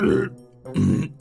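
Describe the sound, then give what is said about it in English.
Two loud, deep burps in quick succession, separated by a brief pause, apparently voiced by a person imitating the sound up close, with no talking. “And as they activated the robot, it started walking around in circles and burping a lot.”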